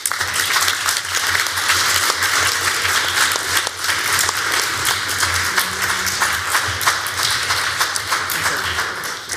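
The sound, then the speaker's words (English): A crowd applauds two debate teams at the end of a debate, a dense, even wash of many hands clapping at a constant loud level for several seconds with no voices standing out. “And I know we just had a round of applause, but let's give just one more round of applause to our fine debate teams.”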